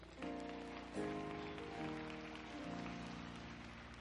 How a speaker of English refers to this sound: Get a lot of hand clap.